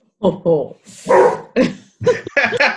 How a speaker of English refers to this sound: Like, can we count the dog bark as a shame bell, please? Yes, you can.